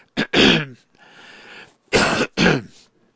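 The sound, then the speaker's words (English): Several loud sneeze-like bursts: a sharp double burst, a quieter breathy stretch, then two more forceful blasts in quick succession, with no talking. “Okay, here we go again. God bless you.”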